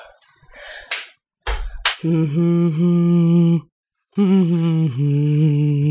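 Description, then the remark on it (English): A single voice hums a slow, made-up sciencey theme song in long sustained notes with gentle pitch bends, pausing once before continuing, preceded by a few short breathy noises and clicks. “we're going to need you to sing hum a sciencey theme song that you've made up for this next section”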